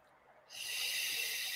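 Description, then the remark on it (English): After a brief moment of quiet, a slow, deep breath is drawn in fully and let out fully through the mouth with an airy, hissing sound that holds evenly to the end, no voices present. “So all you're doing is breathing in all the way, slowly, slowly, and breathing out all the way through the mouth.”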